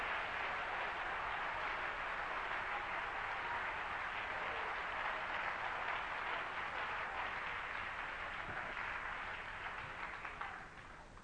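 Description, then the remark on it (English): An audience gives the Lord a hand clap, steady, dense applause that holds loud for about ten seconds before starting to taper off at the end, with no voices over it. “We ought to give the Lord a hand clap for His strength and His mercy in this day.”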